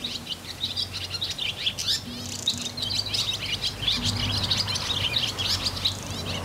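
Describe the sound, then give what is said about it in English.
Busy outdoor birdsong from barn swallows, blackbirds and wrens at Heal, several birds chirping and twittering over one another, a continuous bright chorus of quick trills and calls over a low steady hum, no voices. “As we dreamed up the future soundscape of Heal, we listened to the birds that had already made their home here. Barn swallows, blackbirds, wrens.”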